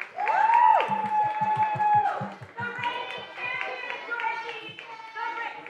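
An audience applauds with loud cheers and high whoops over a steady, rhythmic low thumping as a contestant is called back on stage for the final showdown, keeping up a lively, continuous roar for the full few seconds.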